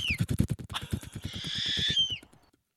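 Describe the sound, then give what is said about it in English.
An owl hoots with a drawn-out, wavering high cry over a steady run of rapid, low thumping clicks, fairly loud, before fading out. “Nope, it's not a bat. It's an owl.”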